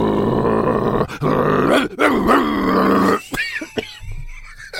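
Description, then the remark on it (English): A man's voice imitates a dog, growling loudly and continuously for about three seconds, then trailing off into a few shorter, quieter grunts and snarls, close to the microphone. “Well, at that moment, Bielsa begins to growl and grunt.”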